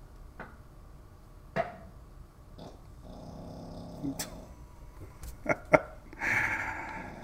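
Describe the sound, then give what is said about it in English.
A dog snoring: irregular soft snorts and clicks, then a longer raspy, breathy snore at the end. No one speaks. “You gotta stop this snoring stuff.”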